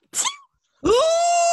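A loud, ugly sneeze: a short breathy burst, a brief pause, then a harsh voiced blast that rises in pitch and is held to the end.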